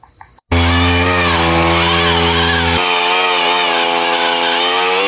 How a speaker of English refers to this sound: This tree scooter is the brainchild of a betel nut farmer in southern India.